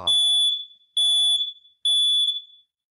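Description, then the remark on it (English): A house fire alarm beeps three times in a steady rhythm, each shrill, piercing tone lasting about half a second, loud with brief silences between. “It's like I just had a fire alarm go off in my house while I'm talking.”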